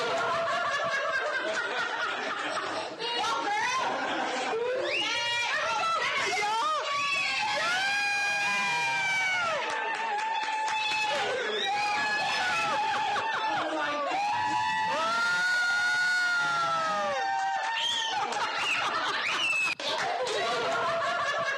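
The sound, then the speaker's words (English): A loud, dense crowd cheers and shrieks continuously, with many overlapping high-pitched screams and excited laughter rising and falling for about twenty seconds. “it makes you want to just stand up and cheer. Very much like this, as a matter of fact.”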